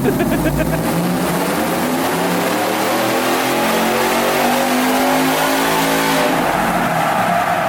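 The LT4 V8 engine of a 720-horsepower Langenfelter Colorado truck on big knobby off-road tires revs hard on dyno rollers, its roar climbing and falling in pitch through rising harmonic sweeps, loud and continuous throughout with no voices over it.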